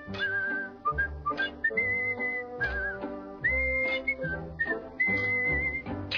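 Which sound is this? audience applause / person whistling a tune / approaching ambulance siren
person whistling a tune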